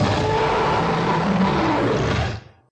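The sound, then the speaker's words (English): A single loud, deep roar from a creature about 12 feet tall as it awakens. The roar is harsh and rumbling, holds steady for a couple of seconds, then quickly trails off. No one speaks. “The cable from the computers that attach themselves to the creature begin to glow, and with an ear-splitting roar, the creature awakens.”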